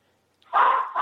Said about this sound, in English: That is a Maltese poodle making all that noise. I'm sorry about that.